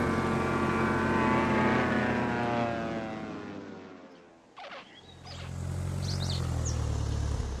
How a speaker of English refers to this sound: Weight. Everything has weight, especially big airplanes. We can just slow down our engines a little bit to reduce our thrust, and we let gravity bring the plane down to the ground.